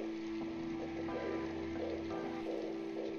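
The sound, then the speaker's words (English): Steady heavy rain pours down in a continuous dense hiss, with a low constant hum beneath it and no voices. “It's raining pretty hard.”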